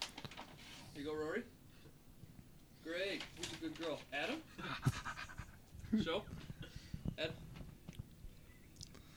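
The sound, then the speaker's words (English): A dog pants in quick, breathy bursts, fairly quiet, while a person's voice comes and goes over it with some faint handling noises. “Where's my dog treats? Is it for my dog?”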